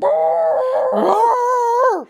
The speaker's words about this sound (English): can you hear the dog going shit nuts? Oh, I do. I hear him. What is he even barking at? Going. He loves to bark.